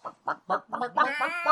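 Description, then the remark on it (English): A voice imitates a clucking chicken, as a bunny in a Cadbury egg commercial: four quick, evenly spaced clucks, then a longer, drawn-out squawk, loud with nothing else in the background. “Yeah, but it has the bunny with the doing the chicken sound.”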